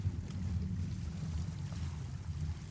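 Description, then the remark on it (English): A water taxi engine drones steadily as it motors across open water from Fair Harbor to the village of Koyukit on the west coast of Vancouver Island, a low continuous rumble with wind and water noise washing over it throughout. No one speaks. “We arrive at Fair Harbor, the end of the road, and take a water taxi over to the village of Koyukit.”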